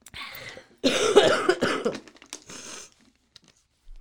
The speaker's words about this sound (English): First, I'm going to cough. Into the tissues